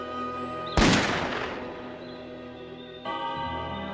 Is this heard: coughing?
no